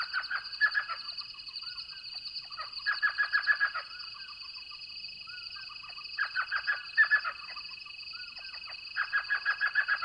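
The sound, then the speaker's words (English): At night in the Sonoran Desert, an elf owl at its nest hole in a saguaro cactus gives several bouts of rapid, yelping chatter, each a quick run of notes, over a steady, high-pitched drone of night insects. “Only 6 inches in height, elf owls are found throughout southern Arizona, their repeated yelps being a signature sound of the nighttime soundscape.”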